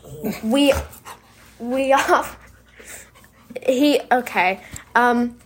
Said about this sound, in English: So Brian, our puppy dog, is here right now, and he wants to be in the podcast.